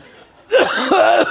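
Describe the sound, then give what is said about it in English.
A voice loudly imitates coughing: a few rough, voiced bursts in quick succession, after a brief quiet start. “They just keep coughing all over.”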